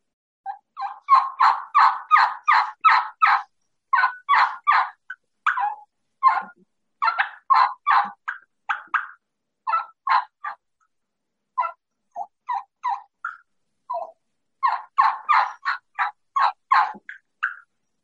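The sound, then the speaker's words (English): Repeated plain turkey hen yelps from a game call, played loud in several quick, evenly spaced runs with short pauses between, and no talking. “And then that's just a plain hen yelp”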